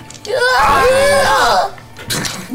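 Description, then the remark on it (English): A voice mimics a Wilhelm scream: one loud, drawn-out cry lasting over a second, its pitch swooping up and then sliding down, followed by a brief breathy noise. “Wilhelm scream.”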